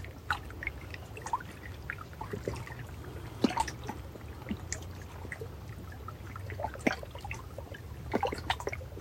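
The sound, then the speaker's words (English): Gentle ocean waves lap in a steady low wash broken by scattered small splashes and trickles at irregular moments, with no voices present. “Being caressed by the wind, the sun, the sounds of the waves.”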